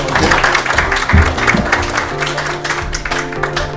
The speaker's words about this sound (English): can we have a final round of applause for Richie